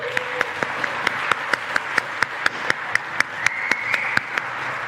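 A crowd applauds steadily, a dense wash of many hands clapping at moderate loudness with sharp individual claps standing out at a fairly regular pace, with no talking.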